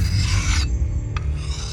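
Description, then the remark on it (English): A man in a village hut sharpening his dagger: a long, harsh rasping stroke, a quick short scrape, then another grinding stroke, all over a steady low rumble. “But when she stepped inside, she was alarmed to find him sharpening his dagger with a satchel on his back.”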